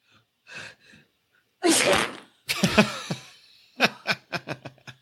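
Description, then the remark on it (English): A scene from the film Hall Pass: after a couple of soft inhales a woman gives a sharp, loud sneeze, quickly followed by a rough, spluttering fart as she sharts herself, then a string of short, rhythmic laughs. “She sneezed and sharts.”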